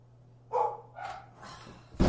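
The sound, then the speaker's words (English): A dog barks three times in a steady rhythm, moderately loud, followed by an abrupt louder burst of noise at the end. “Don't buy a dog.”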